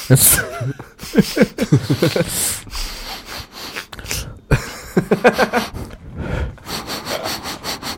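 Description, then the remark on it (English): Someone mimics loud, exaggerated sniffing in quick rhythmic bursts, with voices and laughter breaking in between the sniffs. “It's like a, the straw that broke the camel's back was the miming sniffing of dicks in a trap club.”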